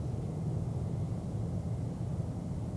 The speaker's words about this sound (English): Rather faint. Nope. I hear more traffic than anything. Yep. Yep, more background noise and ambient than anything, that's right.